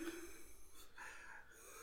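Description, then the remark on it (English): Heavy, strained breathing of a person trying to cry, with rough snorting and gasping breaths in quick succession, fairly quiet and with no talking. “You heard that breathing?”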